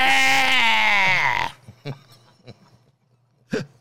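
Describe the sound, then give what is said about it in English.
A person lets out one loud, strained imitation scream lasting about a second and a half, sliding slightly downward in pitch, then quiet follows, broken by a few short, faint bumps and noises. “So, well, I thought it was more the scream that you would elicit that would disorient them, you know?”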